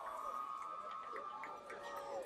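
A stadium crowd of baseball fans at a Carroll Tigers game cheers steadily, a dense wash of many overlapping voices that holds at a fairly even level throughout, with no single speaker standing out.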